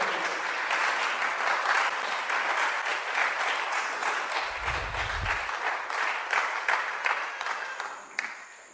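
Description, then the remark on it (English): A crowd claps their hands for people as they come, in sustained, dense applause at a steady loudness, with many overlapping claps and a faint low rumble midway before it tapers off. “Clap your hands for them as they come.”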